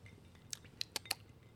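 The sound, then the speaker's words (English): Four quick, bright clinks of drinking glasses tapping together in a toast to one year, spaced unevenly over about half a second, fairly quiet against a low background hum with no voices. “All right, so yeah, cheers. Let's go. Cheers to one year.”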